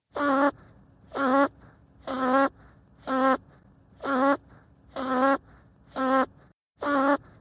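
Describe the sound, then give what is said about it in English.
An archival recording of a man snoring, sped up 20 times, turns into a rapid series of eight short, buzzy, insect-like bursts with a regular rhythm and brief gaps, loud with no voices. “That's actually an archival recording I have of my father snoring that I sped up 20 times.”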